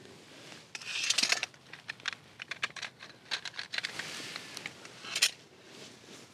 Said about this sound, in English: Just using an Inktense pencil to capture some of the bushes.